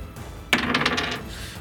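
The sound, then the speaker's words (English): Dice clatter across a hard tabletop in a roll for an attack in a tabletop role-playing game, a sharp first hit followed by a quick run of rattling bounces that settle within about a second, fairly crisp, with no talking. “I didn't roll for attack.”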